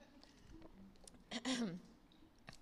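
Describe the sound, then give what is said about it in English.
Someone takes a quick drink of water, with one short wet gulp and a faint swallow, set against quiet room tone. “Sorry, I'm going to drink some water.”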